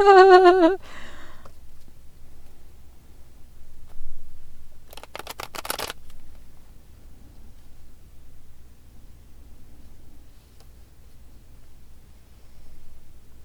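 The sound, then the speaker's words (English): A deck of tarot cards is riffled once, a brief burst of rapid, crisp fluttering clicks lasting about a second, after a short tonal ring at the start and amid a low steady hum. “That second shuffle was like, oh my, that was sticky, nutty, crazy. The cards did not shuffle very easily.”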